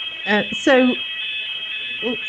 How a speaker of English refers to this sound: Is that a fire alarm? It's a check. It's the weekly check. Ah, okay. Your drill. 10 o'clock. 10 o'clock every Tuesday.